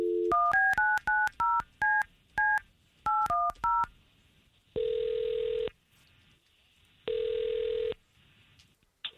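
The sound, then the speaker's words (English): A quick run of touch-tone dialing beeps, about a dozen short dual-pitched tones in an uneven rhythm, as the morning show of radio station K92.3 phones a listener, followed by two long ringback tones on the line separated by a pause. “We've got Tara's phone number thanks to you, and let's see if we can't call her.”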